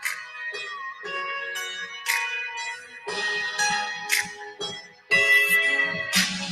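An R&B song plays without vocals, with bright, bell-like keyboard chords struck every second or so over a soft low bass, sustained notes ringing between the strikes.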